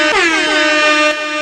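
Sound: air horn sound effect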